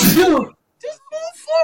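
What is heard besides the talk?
sneeze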